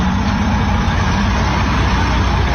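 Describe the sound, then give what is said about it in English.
A large livestock truck carrying approximately 300 animals approaches, its engine rumbling loudly and steadily, a dense low roar with road noise that holds at a constant level throughout, with no voices. “Here we have the truck approaching, where approximately 300 animals are stacked into this truck.”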